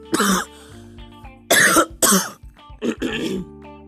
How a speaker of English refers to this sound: Sorry for the coughing.